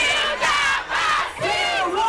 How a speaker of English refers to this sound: Last week, a crowd gathered in Lagos, Nigeria, to celebrate an attempt at a new world record.